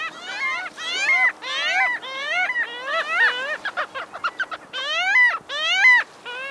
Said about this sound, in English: This elegant buccaneer is a parasitic Jaeger, a relative of gulls that is built for sprinting speed and predatory feats.